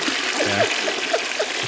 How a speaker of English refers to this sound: Flush that sucker down.